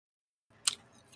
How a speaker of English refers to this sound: Sorry, I'm chewing on said ice.